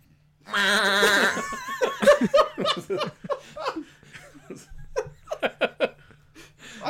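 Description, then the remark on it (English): A person does a wavering, nasal imitation of a goat bleat for about a second, then choppy bursts of laughter follow, with several short laughs trailing off. “That's that like the worst goat sound I have ever heard. You have to do the lip thing.”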